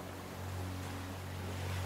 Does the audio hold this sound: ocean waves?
yes